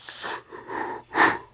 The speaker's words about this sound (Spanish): Perdonando, el bostezo